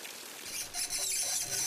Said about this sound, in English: Really? It just appeared in this closet with a waterfall? Well, that's actually just a loose faucet.